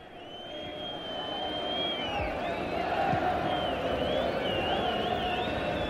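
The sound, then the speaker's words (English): A large stadium crowd at a Wales versus England football match roars and cheers as Wales manager Mike England rises, in a steady, dense wash of noise that swells slightly. Shrill whistles ring out over it, and no single voice stands out. “And the crowd rises as Mike England rises.”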